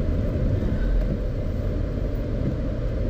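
Steady low rumble of road noise inside a moving Ritz car, a dense continuous drone concentrated in the low end, fairly loud and unbroken with no voices present.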